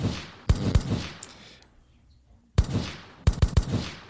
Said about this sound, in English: A little fake gunshot.